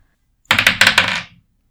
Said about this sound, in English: Okay, can you roll a dice that I can read the numbers off, though, please? Do you want to tell me which dice to roll? Do you want to roll the dice?